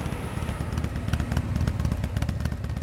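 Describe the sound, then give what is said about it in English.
A woman's motorbike engine putters steadily as she heads home through a market past the seafood section, its low rumble mixed with the clatter and bustle of a busy outdoor crowd. “A lady headed home on her motorbike in front of me.”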